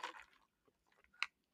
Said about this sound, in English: Let's take a sip.